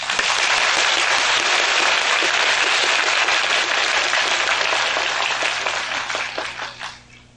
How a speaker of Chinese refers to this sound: 现在我们再以热烈的掌声恭请师父开示。